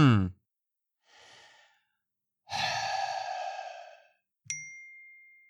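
A few heavy sighs and breaths, then a single bright notification ding from a phone set to Do Not Disturb rings out clearly near the end and lingers as it fades.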